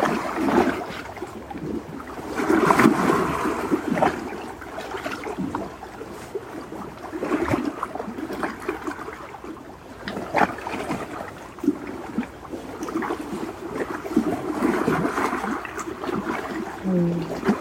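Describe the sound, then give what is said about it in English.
Gentle lake water laps and sloshes steadily against a boat or shoreline, with irregular soft splashes rising and falling over a continuous low wash, moderately loud. “Water bathing, that's what we're doing right now, is water bathing, light bathing.”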